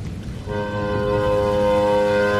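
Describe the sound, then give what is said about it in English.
A loud boat horn from a boat off a hazy beach sounds one long, steady blast that begins after a brief rumble and holds with a rich, droning tone, with no talking. “It looks like a boat.”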